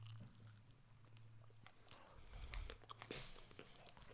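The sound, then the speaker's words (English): Close-up biting and chewing on a candy bar, with a run of crunchy, sticky mouth sounds and short bursts of mastication right near the microphone. No one speaks. “I'm trying not to chew on the microphone.”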